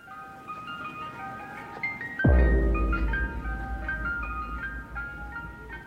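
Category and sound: vehicle, ice cream truck jingle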